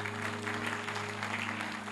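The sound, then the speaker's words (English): A crowd claps together as worship to Jesus, a dense, steady wash of applause, with a low constant hum underneath and no voices. “Clap to Jesus. Just clap. Keep clapping.”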